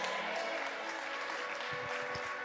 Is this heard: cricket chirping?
no